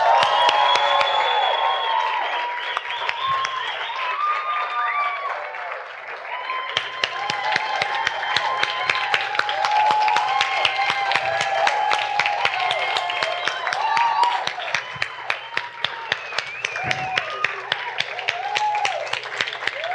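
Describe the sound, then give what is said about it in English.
A large crowd at Redemption Church cheers and applauds continuously as the service is dismissed on a count of three, with dense rapid clapping, shouts and whoops layered on top, loud and sustained for the whole stretch. “And everyone's gonna cheer.”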